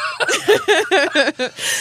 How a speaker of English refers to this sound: Stop. I actually am coughing.